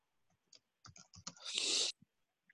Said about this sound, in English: I'm typing it.